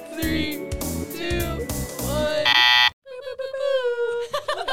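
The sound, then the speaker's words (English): A two-minute timer alarm goes off, a loud electronic buzz bursting out for under a second amid lively, overlapping voices, with animated speaking continuing right after it cuts out. “I'll set the timer.”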